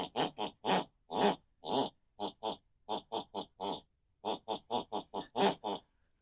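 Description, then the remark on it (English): A mother snores a tune in the room next door: a quick, rhythmic run of about two dozen short, nasal snorts, grouped into phrases like a melody, fairly loud with brief pauses between phrases and no talking. “Each week we press our ear against the bedroom wall, whatever my mother listens to before she goes to bed, picks and pulls in our unconscious mind, and that's the very tune she then snores.”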